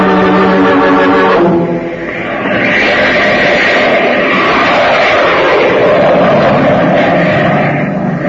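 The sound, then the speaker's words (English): A loud, steady jet airplane roar fills the scene, with a high engine whine at the start giving way to a broad, sustained rushing drone of flight, the jet making an emergency flight to New York. “Now, after you talk to Spaulding, call the airport and order the jet to be ready for a takeoff within an hour.”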